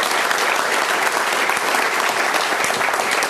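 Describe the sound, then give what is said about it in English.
A steady round of applause from an audience at an LSE event, welcoming the speakers: dense overlapping claps at a constant level for a few seconds with no voices rising above it. “Can you have a round of applause to welcome us?”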